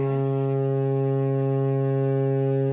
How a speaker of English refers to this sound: I think that's a foghorn moment. We need a foghorn.